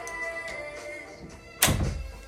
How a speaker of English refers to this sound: I should shut the door.